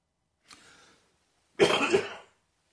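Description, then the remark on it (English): A soft breathy throat-clearing is followed a moment later by a louder, harsh cough with two quick bursts, with no talking, from a person in recovery who is still hacking and coughing. “I'm still hacking and coughing a bit.”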